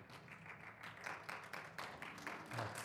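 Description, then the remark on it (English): Soft, sparse golf clap from a small audience, a scattered patter of hand claps at a quiet, polite level, with no cheering and no speech over it. “Love that golf clap.”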